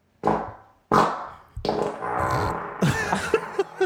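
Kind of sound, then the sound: human body sound, fart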